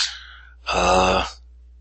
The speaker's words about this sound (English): Yeah, essentially you're hearing the sounds of a struggle. And some kicking, some banging, essentially argument among minions as to what to do next.